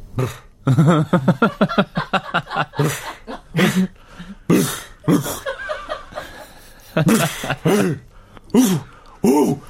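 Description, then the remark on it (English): A person imitates the gruff cough a dog makes before it barks, lying down and hearing something: a run of short throaty coughs and snorts, fairly loud, mixed with chuckling and a few breathy bursts. “There's a dog before it barks. Go on. The pre-bark cough.”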